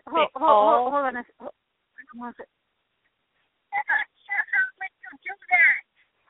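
pet bird squawking

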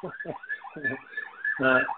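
ambulance siren passing by

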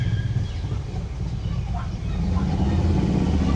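car engine noise

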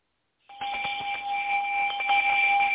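bell sound effect

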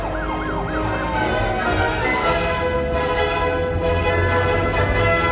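emergency vehicle sirens blaring

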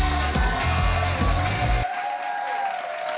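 crowd cheering

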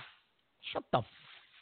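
slap sound effect

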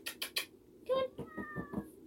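cat meowing

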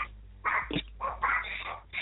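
small dog whimpering

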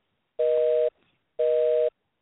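telephone busy signal

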